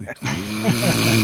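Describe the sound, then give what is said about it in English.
A man snoring: one long, rumbling breath with a low, buzzing tone that rises and wavers slightly. It is loud, with no other sounds around it. “You hear him snoring.”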